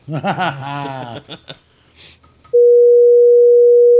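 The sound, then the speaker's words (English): Laughter and a chuckling voice fill the first couple of seconds, then a loud, steady censor bleep tone at a single mid pitch sounds alone for about a second and a half. “Bleep that out, sorry.”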